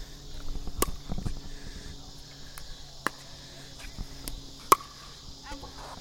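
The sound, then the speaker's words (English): Annual cicadas buzz in a steady, high-pitched drone that runs unbroken and even through the whole stretch, with a few sharp clicks and soft thumps. “So I think these annual cicadas are louder than Brood X.”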